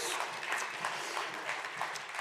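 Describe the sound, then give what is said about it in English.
A church audience applauds Pastor John, Angel and the team steadily, many hands clapping in a dense, continuous patter that stays at an even, moderate loudness throughout, with no voices standing out. “Can we give it up for Pastor John?”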